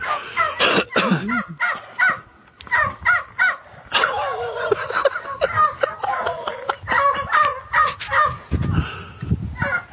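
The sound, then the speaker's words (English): A flock of 10 to 12 turkeys gobbling over one another in dense, overlapping bursts, loud and continuous for the whole stretch. “There's got to be 10 to 12 turkeys there.”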